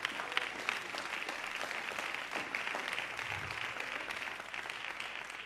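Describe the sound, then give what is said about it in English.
A crowd claps their hands to the Lord in steady, dense applause, a continuous wash of many overlapping claps at moderate loudness with no voices standing out. “As you're seated, clap your hands to the Lord.”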